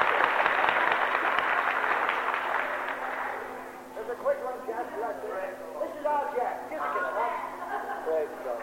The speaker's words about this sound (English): Give him a clap.